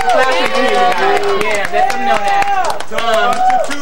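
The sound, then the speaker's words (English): An audience claps steadily, sharp irregular hand claps layered with excited voices and cheering from several people, loud and continuous throughout. “So clap so he can hear you guys.”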